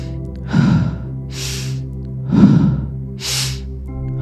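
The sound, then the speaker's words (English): Two slow, deep breath cycles during a guided visualization exercise, each a breathy inhale followed by an airy exhale, over a soft, steady musical drone with no talking. “That's it. Keep breathing.”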